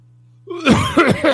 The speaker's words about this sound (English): Sorry. Packers fans make me cough.